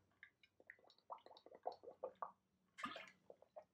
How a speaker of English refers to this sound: I'm just gonna take a quick sip of water.